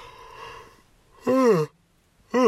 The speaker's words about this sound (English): Man, why am I yawning? Stop it.